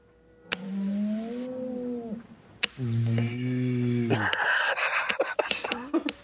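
A cow moos twice in long, drawn-out, steady calls, fairly loud, followed by a burst of clattering, rustling noise.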